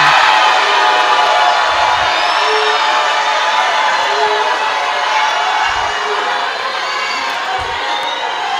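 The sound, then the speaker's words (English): A large audience shouts hallelujah together in a loud, sustained roar of many voices that stays steady for several seconds, with no single speaker standing out. “We are shouting seven. Shout hallelujah.”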